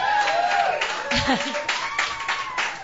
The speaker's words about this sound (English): Okay, all the people clapping are going home early, of course. So, yeah, you guys go, go!